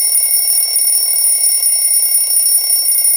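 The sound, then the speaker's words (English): An alarm bell rings loudly and continuously, a steady metallic clatter that holds without pause for the whole stretch, with no voices. “Hey, wouldn't it be nice to have an alarm bell like that go off?”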